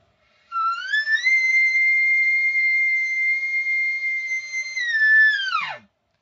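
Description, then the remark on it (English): An elk locator bugle blown through a Phelps Renegade, the Dirk Durham signature bugle tube: one long, high, whistling note that climbs, holds steady for several seconds, then breaks sharply downward into a brief low grunt. No one speaks. “So, again, this is the Phelps Renegade, the Dirk Durham signature bugle tube, and here's a locator bugle on it.”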